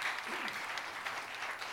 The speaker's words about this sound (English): Can we clap our hands and bless the Lord?